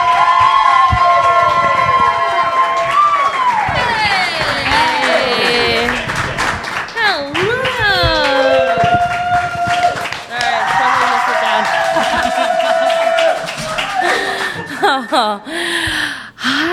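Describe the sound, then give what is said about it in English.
A crowd at a Pod Slam live event cheers and applauds loudly for about seventeen seconds, welcoming Queer Movie Night on stage, with high whooping and rising and falling shouts riding over steady clapping that dips briefly near the end. “And please give it up for Queer Movie Night!”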